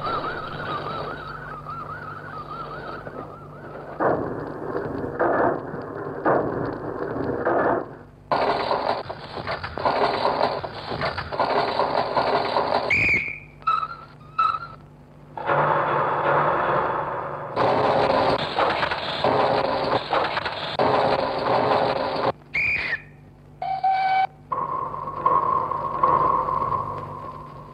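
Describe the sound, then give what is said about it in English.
A musique concrète piece, Étude au chemin de fer, made solely of pre-recorded train sounds cut together abruptly: rumbling, chugging mechanical noise in blocks, broken by sudden silences, sharp clanks and brief whistle blasts, all loud with no talking. “What you're listening to right now is his Étude au chemin de fer, a piece solely comprised of different train sounds.”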